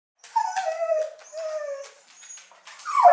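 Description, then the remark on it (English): A dog whimpers and howls, a few drawn-out, wavering high whines that slide downward, one after another with brief breaks, and no one speaking. “How could you just walk out of the house if your dog is doing this?”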